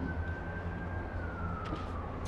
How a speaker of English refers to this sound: Sirens.